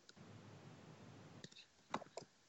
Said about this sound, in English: I'm typing in Google right now. Is polio coming back?